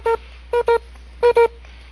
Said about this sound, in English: And right about that time, your D6 starts to beep.